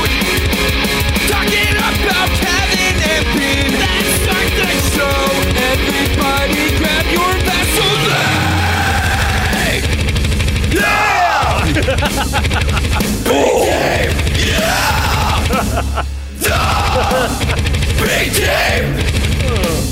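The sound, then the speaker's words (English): A loud, heavier rock version of a song that starts punk rock, with distorted, driving instruments and harsh screamed vocals that grow more intense partway through, playing continuously at full volume. “So he did a heavier version.”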